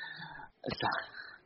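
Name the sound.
sneeze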